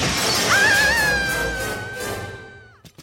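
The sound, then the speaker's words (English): A creature of living wax shatters to pieces in a loud crash, and a bright ringing tone lingers and slowly fades over a couple of seconds, ending with a few small clicks. “she's shattered.”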